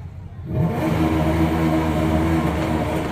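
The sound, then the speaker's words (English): A one-of-a-kind car's engine revs up and accelerates as its throttle is worked with a button, its loud, steady mechanical drone swelling in after a quieter half-second and holding strong, with no talking over it. “To control the throttle, the speed, this button right here.”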